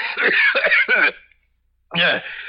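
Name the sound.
coughing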